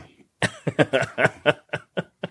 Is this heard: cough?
yes